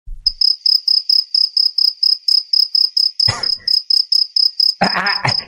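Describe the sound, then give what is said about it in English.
Crickets chirp in a steady, regular pulse, a high-pitched trill repeating roughly every third of a second, with a couple of brief louder rustling bursts partway through and near the end. “The Matt Gaetz crickets?”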